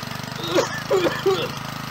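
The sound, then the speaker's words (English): A small gas engine, started with a pull cord, putters steadily, a rough rhythmic idle running throughout, while a person talks briefly over it in the middle. “rip the choke or rip the pull cord and start it up. So there's the sweet sound. Listen to that thing go.”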